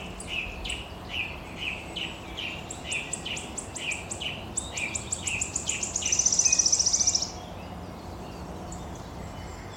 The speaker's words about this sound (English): But for now, we'll just have a little bit more wood warbler before we head to Sussex.